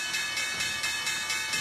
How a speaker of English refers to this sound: All right, guys, there's the opening bell at the NYC live shot of Times Square.